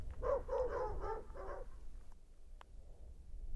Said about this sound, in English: The flapping got the neighbor's dog barking. Then, more distantly, other dogs began to bark.